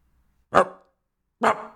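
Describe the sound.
Two loud, close dog barks about a second apart, each a short sharp burst with a brief ringing tail, separated by silence.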